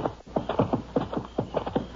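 Horse hooves clip-clop in a steady, quick rhythm, paired knocks repeating over about two seconds, moderately loud, with no voices.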